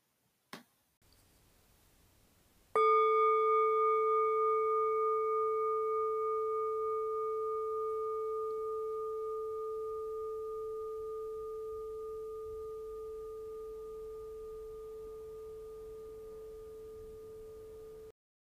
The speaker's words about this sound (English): And we'll begin and end with the bell.